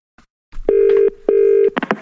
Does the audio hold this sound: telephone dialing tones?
yes